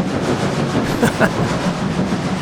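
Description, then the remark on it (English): A steam train rolls along the rails with a steady rumble, broken by a couple of sharp metallic clacks near the middle. No voices. “Gotta love the sound of a steam engine.”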